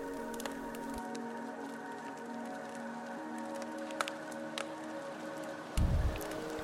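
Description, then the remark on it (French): A steady, hissing wash of ocean waves on a beach beside a campfire at night, with scattered crackling ticks and a deeper rumbling surge near the end as the sea grows rougher. No voices. “Parfois, la mer s'agite, déclenchant ainsi un bruit de vagues plus important.”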